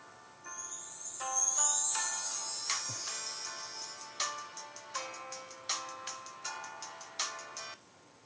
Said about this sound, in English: Does a big girl want to turn down her ringtone for this?